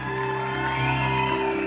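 An audience of women at a church service cheers and screams in a steady, continuous roar of high voices, held over a sustained, droning organ-like chord that lasts the whole time.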